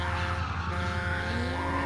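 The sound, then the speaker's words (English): A bus skids with tires squealing, a loud continuous screech over a rumbling engine, the pitch climbing toward the end. No voices are heard. “The bus is driving erratically.”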